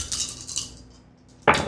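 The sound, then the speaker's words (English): Dice clatter in a quick run of sharp, bright clicks as extra dice are rolled in a tabletop role-playing game, fade briefly, then a louder rattling burst as they tumble and settle on a hard surface. No voices. “Okay, so I will give you another 1 dot stunt, so take 2 extra dice.”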